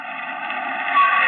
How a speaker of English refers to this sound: You jump as a car pulls up out in front.